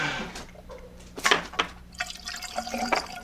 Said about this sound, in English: Pouring some coffee.